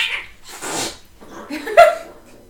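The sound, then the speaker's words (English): Cats scuffle, with sharp breathy hisses and bursts of noise followed by a short, strained yowl near the end. No one speaks. “Guys, don't bite her!”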